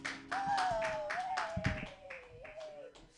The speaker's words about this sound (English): Thank you, guys. Clap your hands together for Hunter Uniac.